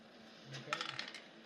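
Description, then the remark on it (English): A few dice clatter and tumble across a tabletop in a quick burst of light clicks and rattles, fairly quiet, then settle; the roll is a natural one. “And I roll that. Natural one.”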